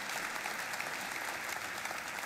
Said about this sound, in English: We're celebrating so much. Let's give one more round of applause for all these confirmation students. They are incredible.